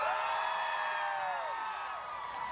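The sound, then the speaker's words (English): An audience screams and whoops together after being asked to scream if they hate capitalism, in a loud, sustained burst of many overlapping high voices, holding steady for a couple of seconds before trailing off slightly. “If you hate capitalism, please scream.”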